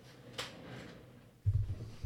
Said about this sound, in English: They're pushing away on the chair.